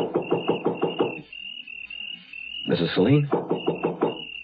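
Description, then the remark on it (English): Two bursts of about six quick, evenly spaced, loud knocks on the front door of a house on a dark night, separated by a voice calling out once, over a faint steady high hum. “It was so dark I couldn't see where the doorbell was, so I knocked.”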